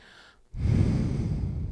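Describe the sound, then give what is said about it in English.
After a brief near-silence, a loud, heavy breath rushes out, a sustained airy exhale lasting over a second with no speech. “You hear me breathing?”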